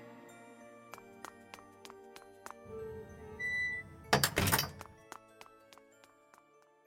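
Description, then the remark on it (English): A side door slides open with a low rumbling scrape, then shuts with a loud thump, while a steady, sharp ticking clicks on in the background. No one speaks. “I'll have to sneak out the side door.”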